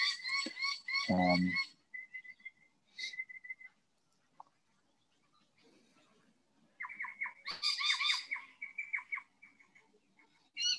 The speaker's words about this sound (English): Honestly, I think the birds are doing a better job than I am.